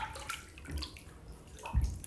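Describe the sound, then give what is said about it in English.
Water sloshes and splashes in a filled bathtub, with two heavier swishes of movement amid a soft, continuous watery wash. “I'm sorry, that was like really loud, and I realized I just ran out of hot water, and I probably should have gotten in it right when I filled the tub up.”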